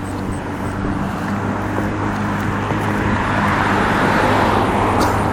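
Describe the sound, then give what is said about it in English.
A vehicle's broad, steady engine and road rumble builds slightly louder over several seconds, as if a car is driving past. No one speaks. “That was my car for a second.”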